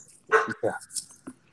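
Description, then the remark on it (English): A dog barks two or three times in quick, sharp bursts, fairly loud, followed by a fainter yip. “There's the dog.”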